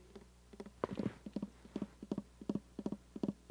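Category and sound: animal, horses galloping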